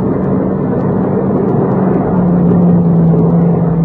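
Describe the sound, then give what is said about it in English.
A loud, steady engine rumble of a car driving past fills the whole stretch, with a low hum that drops slightly in pitch partway through. No one speaks. “Well, he's going past, isn't he?”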